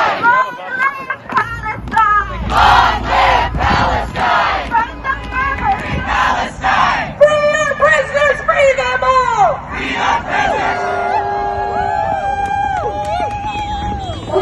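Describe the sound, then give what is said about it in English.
A large crowd of anti-Israel protesters in New York City shouts and yells together in loud, overlapping voices, rising into bursts of chant-like cries that continue steadily throughout. “Rather than yelling and screaming, point out the region on a map.”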